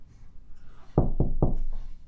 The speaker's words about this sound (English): Go up to the door. Okay. Is it closed? It appears yes. Okay. I'll knock.